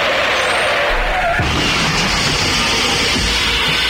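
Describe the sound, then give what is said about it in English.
A car's tires screech in a loud, sustained skid, then a sudden crunching impact about halfway through gives way to rumbling, rattling noise. No voices are heard. “Hey, I haven't crashed a car in a while.”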